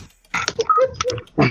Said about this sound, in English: We can hear you typing and breathing.